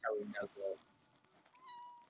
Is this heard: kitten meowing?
yes